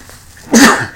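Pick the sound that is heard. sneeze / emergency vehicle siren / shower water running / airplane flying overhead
sneeze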